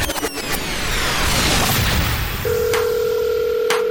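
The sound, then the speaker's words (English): A dense rushing, sweeping whoosh gives way to a steady electronic phone tone, with sharp clicks scattered through; a loud telephone-line sound effect with no voices. “Okay, let's open up our phones again. Who's on the phone next?”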